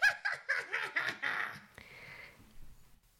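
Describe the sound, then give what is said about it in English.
A person imitates a wizard-like cackle: a rapid run of about six high, nasal, rhythmic bursts that stretch into a longer drawn-out note before trailing off into quiet. “I guess it's a wee bit wizardly, but nothing like what you just did.”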